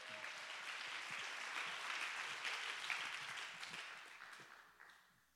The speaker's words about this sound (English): Oh, come on, let's take a minute and clap our hands and give God the praise.